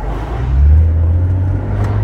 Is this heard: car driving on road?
yes